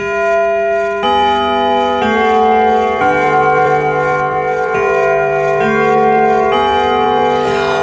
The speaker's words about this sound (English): Well, did you hear the bell?